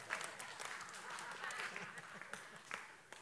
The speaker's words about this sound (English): If you take this, your hand, and this one, and you put them together, it makes a noise.